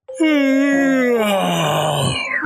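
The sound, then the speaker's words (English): A voice imitates the big bad wolf of a goat story groaning as he stretches lazily and wakes up: one long, loud, drawn-out groan with a rich, buzzy tone that sags slowly lower in pitch over about two seconds. “The big bad wolf stretched lazily and woke up.”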